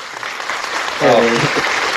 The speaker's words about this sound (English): There it is. Good. Round of applause, huh? Wish I had control over those.